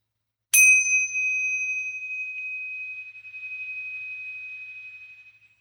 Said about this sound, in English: I'm going to ring a tinksha bell just to clear the space and energy.